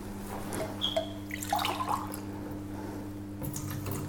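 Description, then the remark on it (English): Water trickles and splashes as it is poured to fill a container, with a few bright drips over a steady low hum in the background. No one speaks. “You fill the water and you start mixing.”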